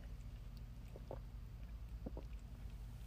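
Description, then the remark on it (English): Soft sips and swallows of water, two short pairs of wet gulping clicks spaced about a second apart over a steady low hum, with no talking. “Sorry, I need a sip of water.”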